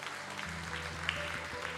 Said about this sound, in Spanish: Si lo cree, dale un aplauso fuerte al Señor.